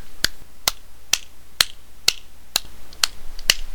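A steady series of nine crisp, sharp hand claps rings out alone, evenly spaced at roughly two per second, fairly loud, with quiet gaps between each clap.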